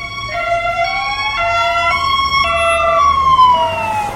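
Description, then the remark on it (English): Wailing emergency sirens fill the scene, several overlapping tones rising and falling together, loud over a low rumble of traffic, as a police bike, another police vehicle and an ambulance arrive. “Got a police bike, another police vehicle, an ambulance.”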